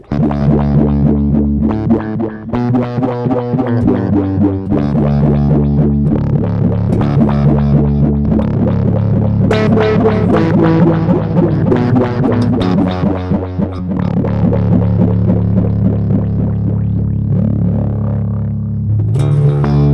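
A bass line played through an envelope filter effect, with added delay echoes and reverb trailing each note, loud and continuous with a steady rhythmic pulse and no voices.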